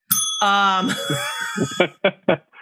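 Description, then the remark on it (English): A single bright bell ding rings out loudly as a sound effect, its shimmering tone lingering as voices start talking over the fading ring. “Wait, that got the bell because it's your mother's voice and yes.”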